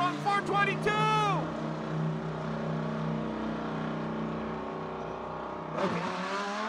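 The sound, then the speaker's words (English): A car with an upgraded muffler revs hard a few times with a loud, throaty exhaust, then settles into a rumbling idle before another sharp rev near the end. “did you upgrade the muffler on your car?”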